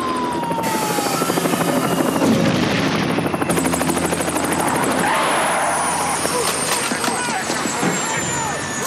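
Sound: helicopter flying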